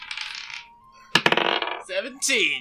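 Twenty-sided dice (d20s) are rolled and clatter across a hard table in a quick burst of sharp clicks, settling after about half a second; brief voices follow.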